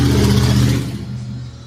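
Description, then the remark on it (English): A motorcycle engine revs, its low harmonic drone surging for most of a second before easing back to a steadier, quieter rumble. “She's on a motorcycle.”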